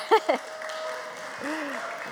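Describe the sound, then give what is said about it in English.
Soft, steady applause from an audience fills the whole clip at low volume, with two brief vocal sounds near the start and a short voiced murmur partway through. “I've never had a round of applause, but that's okay.”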